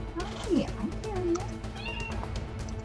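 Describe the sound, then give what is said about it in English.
A cat meows, a couple of short, rising-and-falling cries in quick succession, with a low murmur of background noise underneath. “Hi, kitty.”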